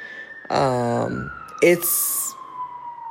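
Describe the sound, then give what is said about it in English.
A police siren wails steadily outside on a residential street in East Oakland, its tone slowly falling, while a person speaks briefly over it. “I know the sirens are going off right now, but like generally it's like a lot more quiet here on the street right here where I live.”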